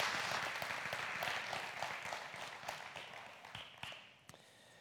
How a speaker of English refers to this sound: Can you guys give Joan a big round of applause? Thank you so much. Thank you so much.